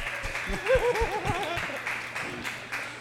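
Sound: audience clapping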